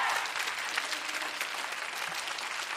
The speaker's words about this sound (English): Today, this week, marks 60 years of Central. Y'all can clap for that, because that's pretty awesome.